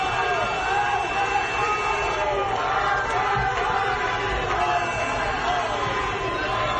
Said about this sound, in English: People were cheering, shooting off fireworks, honking their horns.